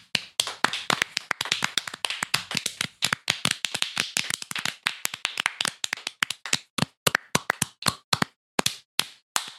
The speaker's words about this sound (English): We got to layer the claps so it sounds like a lot.